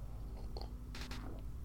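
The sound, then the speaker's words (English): Quiet mouth sounds of someone sipping beer, with a couple of brief wet slurping bursts over a low background hum and no talking. “Nope, I'm just sipping on some beer that the fruit flies in my house are trying hard to get, but I won't let them.”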